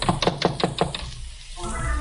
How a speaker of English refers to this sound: I knocked and waited.